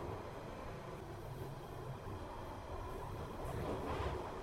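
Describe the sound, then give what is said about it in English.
A steady, loud rumble of a London Underground Northern Line train heading to Edgware as it runs through a tunnel, with continuous low-end roar and rattling wheel noise that swells slightly near the end. No voices. “This station is Edgware. This train terminates here. Thank you for travelling on the Northern Line.”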